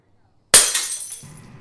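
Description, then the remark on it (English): After a brief silence, glass suddenly smashes with a loud, bright crash, then shards tinkle and scatter as the sound fades over about a second. “Don't step on the glass. Go get me a broom, will you?”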